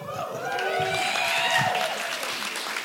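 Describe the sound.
An audience applauds steadily for about three seconds, a dense wash of clapping at a constant level with a few voices cheering faintly within it.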